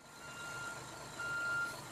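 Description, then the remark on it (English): A truck's reversing alarm sounds a few quick beeps that run into a steady high tone, over a low, rumbling engine and background hum, with no one talking. “Stellar backing up work there, boys. Oh, it's me. Just driving my truck.”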